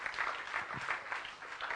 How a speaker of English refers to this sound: Thank you. Won't you clap? Give these guys a hand clap. And these ladies a hand clap.